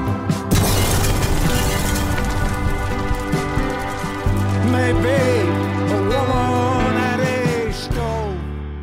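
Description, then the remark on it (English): A sudden, jarring explosion bursts out near the start, its rumbling noisy tail carrying on beneath music with sustained tones and a wavering melodic voice. “All right, so I picked that very jarring explosion.”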